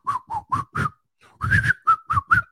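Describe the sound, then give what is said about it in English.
A person whistles a short, bouncy tune: a run of four clipped notes, a brief pause, then a quicker phrase of several more notes, fairly loud. “They're going to be whistling while they work.”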